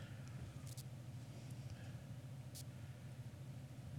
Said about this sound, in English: Do you hear Ava's car running outside? It sounds like there's a car running.